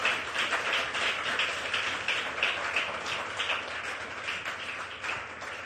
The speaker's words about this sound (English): Are you clapping for me or for Jesus?